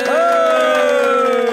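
A loud, brief burst of cheers welcoming a new intern, with a sustained high whooping voice riding over scattered clapping from a small group.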